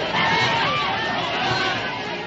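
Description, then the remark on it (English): A dense, steady roar of two armies shouting on both sides at once, loud and continuous for the whole stretch, with no single voice standing out from the mass of crowd noise. “He began running toward me, and I could hear the armies on both sides shouting.”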